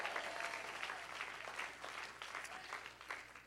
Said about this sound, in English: Everybody clap your hands and shout yes.